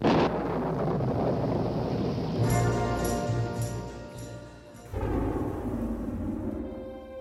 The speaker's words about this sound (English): We even get the same thunder in the very beginning of the song